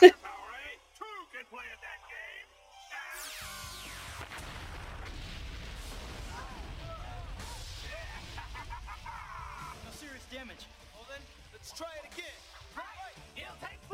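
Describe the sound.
Booming explosions go off in a cockpit, followed by a sustained rumbling roar for several seconds, with voices talking over the din and quieter chatter before and after.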